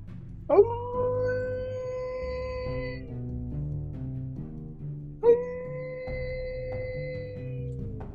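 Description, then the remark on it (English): Two long, sustained animal-call howls made by a man with hands cupped to his mouth toward a forest, each rising sharply then holding a steady wavering tone for a few seconds, ringing out loud and clear over a soft, low musical backing. “Then he cupped his hands to his mouth and gave an animal cord toward the forest.”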